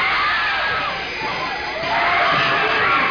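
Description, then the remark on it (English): A large audience at a sneak preview of a horror film screams and shrieks all at once, a dense, loud wall of overlapping voices that dips briefly in the middle before swelling again. “The screams you are hearing are the actual audience reaction to a sneak preview of Visiting Hours”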